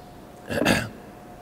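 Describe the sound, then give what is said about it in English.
A person takes a drink of water, with one short, breathy gulp standing out against faint background hum before things go quiet again. “So what's really interesting about this time is that, I need to drink water just a second.”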